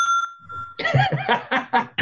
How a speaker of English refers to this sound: We got the Shark Farmer bell on the podcast. I was going to have a bell for this podcast, and I forgot about that till he just rung his bell.